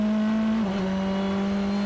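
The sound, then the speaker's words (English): The number 66 GT race car, with Jeff Siegel at the wheel and carrying 15 kilos of ballast weight, drones loudly and steadily, its pitch dipping briefly as it takes the Paul Frere curve before holding a strong, even tone. “Through curve Paul Frere goes the 66 then, with Jeff Siegel at the wheel.”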